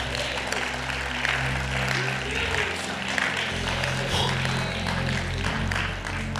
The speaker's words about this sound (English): You can clap your hands if it's blessed your life.